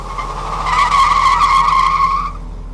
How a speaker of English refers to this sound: You'll be at the truck, just wheel spinning, heading out of there.